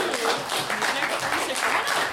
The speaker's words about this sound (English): Big round of applause!